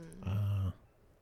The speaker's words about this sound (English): I think somebody's killing a dog. What was that? So listeners can't see this, but if you look behind the woods, there's a farm over here to the right. And on the back side of their farm, they have dog kennels.